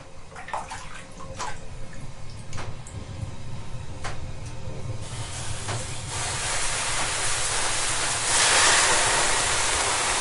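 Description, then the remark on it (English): Finnish sauna ambience with a low rumbling background and scattered sharp clicks, then a broad steam hiss swells up in the second half, peaking loudly near the end. No one speaks. “So, let's go to the Finnish sauna.”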